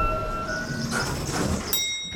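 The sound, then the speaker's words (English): A 2 express train rumbles, with high metallic squealing tones over a steady low roar and a sharp hiss near the end, like a sliding door or brakes releasing. “Two express train.”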